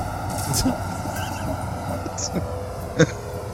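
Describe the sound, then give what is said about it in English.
An underground tram to Warbird Island runs from a sub level with a steady, low mechanical rumble and faint humming tones, broken by a soft clatter early on and a sharper clunk near the end. “Down here, you can get our underground tram.”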